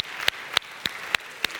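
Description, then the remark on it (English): Five sharp hand claps at a steady, even pace, each a crisp slap standing out over a soft background hiss, with no one talking. “I'm clapping for y'all.”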